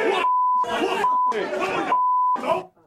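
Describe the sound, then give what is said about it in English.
Protesters' shouted words, including "peace and love", are repeatedly cut off for broadcast television by a steady, high-pitched censor bleep, three pure tones dropping in between bursts of loud, strained yelling. “I realise you had to bleep peace and love for broadcast television.”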